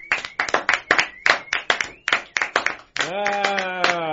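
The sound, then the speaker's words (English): Brisk, steady clapping from a few people as a woman comes in, sharp claps in a quick rhythm for about three seconds, then a sustained voice rises over the clapping as it continues. “Let's start clapping when she comes in.”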